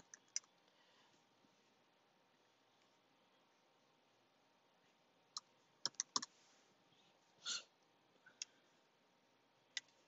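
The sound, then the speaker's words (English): Scattered keyboard key clicks as someone types to look up a Bible verse, over a quiet, hissy background, mostly isolated taps with a short cluster of quick presses in the middle and one slightly longer keystroke, fairly soft. “I'm typing because I heard the Lord say, if sinners entice you.”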